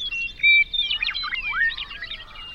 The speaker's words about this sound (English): Birdsong. Birdsong makes it through.